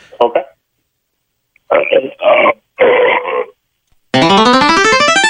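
A caller from York, Ontario, burps as loud as possible into a telephone in a loudest-burp contest after chugging a can of Coke. The burp is loud, drawn-out, buzzy and rises in pitch for over a second, preceded by a few short, rough vocal bursts.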